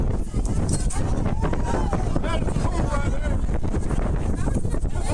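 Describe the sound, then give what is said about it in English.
Loud, steady roar of strong gusting wind from a dust devil at a coach-pitch baseball game in Florida on a windy day, buffeting the microphone, with heavy low rumble throughout and faint voices mixed underneath. “Okay, that's a dirt devil.”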